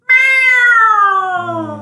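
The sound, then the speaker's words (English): A person imitates a cat's meow: one long, loud, drawn-out mew, close to the mic, that slides slowly downward in pitch and fades slightly at the end. “You still don't have my sound cue up? Oh, it's like I don't. You don't even care about my sound cue anymore. I'll just do it.”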